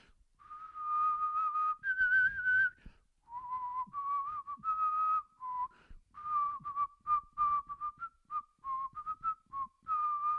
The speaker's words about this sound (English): So, enough bells. Let's just whistle. Why don't I just whistle for the rest of this podcast?